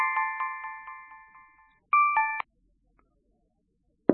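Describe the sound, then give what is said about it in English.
An electronic phone ring chirps in a quick run of about eight clear, fading tones, then a brief burst of stepped dialing tones sounds before the line goes silent; no one speaks. “Why does it keep ringing?”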